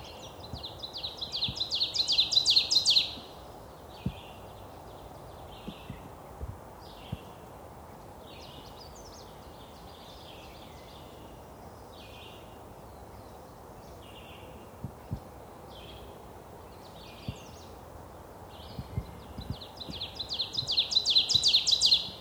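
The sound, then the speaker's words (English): An ovenbird sings its ringing teacher-teacher song twice in the woods of eastern North America. Each burst of rapid repeated phrases swells louder, with fainter bird chirps scattered through a quiet woodland background between the songs. “Here's a recognizable song of the eastern North American woods. An oven bird.”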